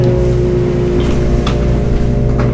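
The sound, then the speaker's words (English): A lawn mower's steady, loud engine drone runs throughout, a low humming rumble with a constant pitch and a few faint clicks on top, and no one speaking. “Why is this guy got to be mowing right now?”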